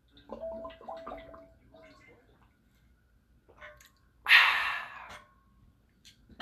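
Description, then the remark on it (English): Quiet gulping and small wet mouth clicks from someone drinking water, then a single loud, breathy gasp of relief after the last swallow, followed by a few soft lip sounds. “But anyways, oh, fuck, let me get more water, because I'm fucking parched.”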